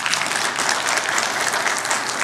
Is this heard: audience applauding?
yes